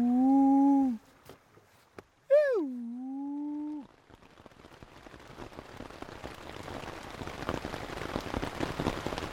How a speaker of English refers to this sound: It's the end of the second week, and it's been pouring rain almost every night.